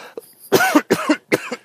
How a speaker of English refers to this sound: pardon me one second. One of the side effects of having a cold is I'm going to cough.